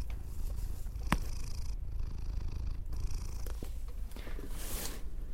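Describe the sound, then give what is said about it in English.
A cat lying on a box on top of a closet purrs steadily, a low continuous rumble with a soft rhythmic pulse, broken by a couple of faint clicks and a light rustle. “Vegas, you're just laying down up on a box on top of the closet? Purring?”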